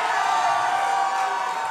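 audience applauding and cheering

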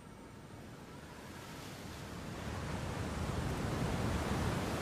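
ocean waves crashing

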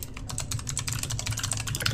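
computer keyboard typing

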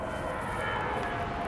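airplane flying overhead

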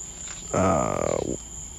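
crickets chirping

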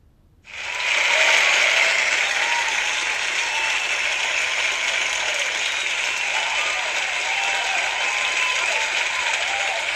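applause sound effect

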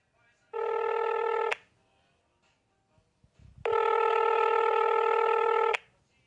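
telephone ringing

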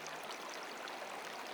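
rushing stream water

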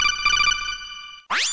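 telephone ringing

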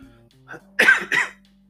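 cough

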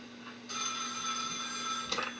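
telephone ringing

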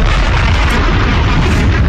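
bomb explosion sound effect

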